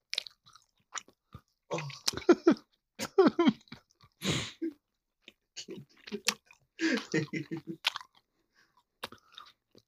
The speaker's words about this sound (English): eating a fruit chew.